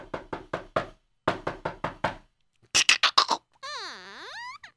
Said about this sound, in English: And I'm knocking at the governor's door.